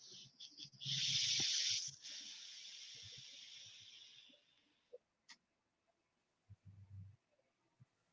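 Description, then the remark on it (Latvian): An e-cigarette coil set to 60 watts sizzles during a vape puff with a bright, crackling hiss for about four seconds, fading out gradually, followed by a few soft clicks and a low thump near the end. “Šeit man ir tas pats uz 60, tas pats čirums, jā, bet citām.”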